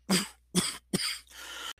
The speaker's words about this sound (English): I apologize for you hearing that cough just now, but I just recorded 9.5 minutes and I'm not going to eliminate a whole thing for a cough at that point.